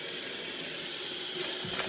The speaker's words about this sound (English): I'm going to wash my hands from the chicken because I've got chicken guck all over me.